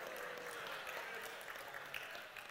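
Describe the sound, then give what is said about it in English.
Scattered audience clapping in response to a joke, a steady crackle of many hands at a fairly soft level that keeps going for a couple of seconds, with no voices over it. “I got as many boos as I did claps on that one.”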